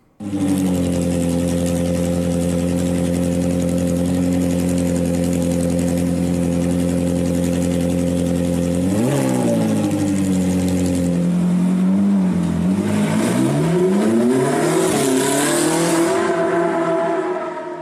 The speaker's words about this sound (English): So that, folks, is the Formula Ford, or the FF1600